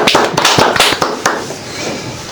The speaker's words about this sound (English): We did a clap last time. Oh, big clap.